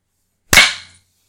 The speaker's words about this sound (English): Look at that clap.